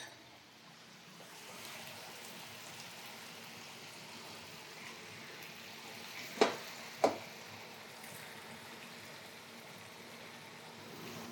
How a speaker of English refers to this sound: So if you have like a glass measuring cupper at home, you could fish it out, a ladle. Kind of add some of that pasta water, that liquid, to the skillet.